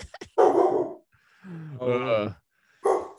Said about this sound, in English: Oh, dog's getting upset. Sorry, we're interrupted.